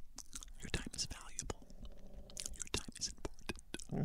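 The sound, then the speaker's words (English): Wet mouth noises: soft lip smacks and clicks repeating unevenly, with breathy whisper-like sounds between them, quiet and intimate like an ASMR recording. “Sounds like you're doing an ASMR video.”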